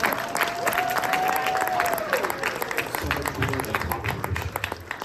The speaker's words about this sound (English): So team Geralt of Trivia, thank you for coming. Round of applause for everyone here.